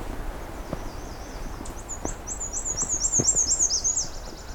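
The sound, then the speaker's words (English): A black-and-white warbler sings a thin, high-pitched warbling phrase of rapid repeated notes that grows louder toward the end, over quiet outdoor ambience with a few soft thumps. “So as I go by here, presumably this bird will keep singing and get some more sample of this.”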